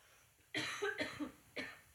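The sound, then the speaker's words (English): A person coughs: a harsh burst of two quick coughs, a brief pause, then one more short cough. No one is talking. “I don't know why I'm coughing so much.”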